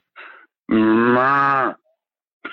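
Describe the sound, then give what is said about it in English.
A person imitates a cow with one loud, sustained moo lasting about a second, preceded by a short breathy sound and followed by silence. “No, did I tell you what the cow said?”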